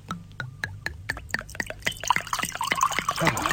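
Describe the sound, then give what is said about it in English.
Wine is poured into glasses for a tasting, starting as a few sharp drips and taps that build into a steady, bubbling trickle of liquid growing slightly louder toward the end. “If we could just pour the line out.”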